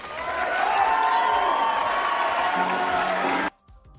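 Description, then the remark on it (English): At the close of a televised debate, a crowd breaks into sustained applause mixed with cheering and a few whoops, loud and steady for about three and a half seconds before cutting off abruptly. “Thank you so much for joining us tonight, and now your applause.”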